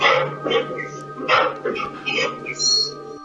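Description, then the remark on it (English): A dog barks several times in quick, uneven bursts at moderate loudness, over a steady low electrical hum and some background noise. “A dog again, dude.”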